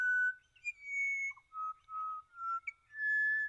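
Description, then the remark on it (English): Pied butcherbird, a black-and-white bird about the size of a jay, singing at dawn in Australia: a series of clear, flute-like whistled notes, some sustained and some brief, shifting between mid pitches in a slow melodic phrase, loud and alone. “The pied butcher bird. Black and white, about the size of a jay, and they're fairly common.”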